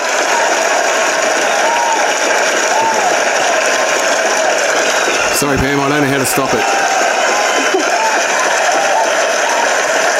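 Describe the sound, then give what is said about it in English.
A canned applause sound effect, played as a guest is introduced on a show, of dense, steady clapping runs unbroken for the whole stretch, loud and even, while a man speaks briefly over it partway through. “Have you ever had an applause like that?”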